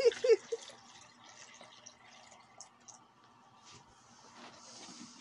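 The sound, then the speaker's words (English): Water is poured steadily into a container, a continuous splashing trickle after a few sharp knocks at the start, fairly quiet with no talking. “Now pour your shit.”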